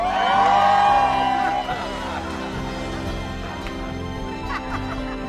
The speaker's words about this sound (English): How's everybody doing today? Well, cheer louder if you're having fun.